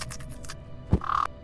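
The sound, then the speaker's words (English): A single harsh, raspy raven caw rings out fairly loud near the end, just after a low thump, with soft rustling noise before it. “You panic, and you instantly transform into a were-raven.”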